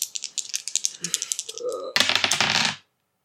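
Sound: dice rolling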